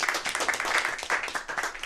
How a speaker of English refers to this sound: We're like a rec soccer league here, audience. We like to clap for everything they do. So let's clap for everything, please.